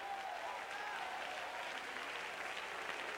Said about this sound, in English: Come on, clap your hands. Let's generate some faith in this place.